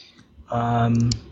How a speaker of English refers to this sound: That thing with your fucking mic is clicking away. I know, man. Bro. I know. I can hear it on my end.